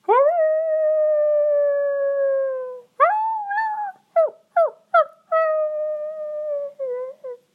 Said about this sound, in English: Is that a wolf? I hope it's not a wolf.